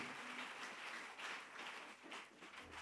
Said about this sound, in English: Let's clap.